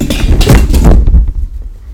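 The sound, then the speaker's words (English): A loud clatter as something is knocked over and falls, with a cluster of sharp knocks and rattles over about a second before it settles into quieter low rumbling. “So somebody just knocked something over.”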